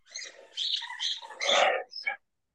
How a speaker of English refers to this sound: Can you hear that? Oh, yeah. So my blind dog, every night, goes up to her toy. She chews it 150 times in a row, just to ensure that we all are on the brink of annoying. And then she walks away from it.